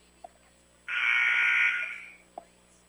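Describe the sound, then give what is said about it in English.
A referee's whistle at a basketball game between Altamont and the Green Wave, blown for a foul, gives one long, loud, shrill blast lasting just over a second and trailing off at the end, with a couple of faint clicks before and after and no talking. “Or a whistle, I think.”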